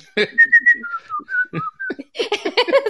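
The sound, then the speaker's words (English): Someone whistles the chorus of a song, a short run of clear, sliding melodic notes, before other voices and sounds take over for the final second. “I hear that and I would whistle the chorus as opposed to singing it, because I didn't always know the words.”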